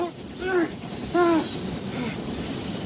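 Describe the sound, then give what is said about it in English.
An approaching train sounds two short, bright whistle blasts about half a second apart over a steady low rumble, moderately loud, with no one talking. “Listen, there's another train coming.”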